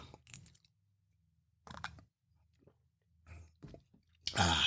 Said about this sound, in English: Now, my mug is full of Joe. I'm going to sip on some while you think about what I just said.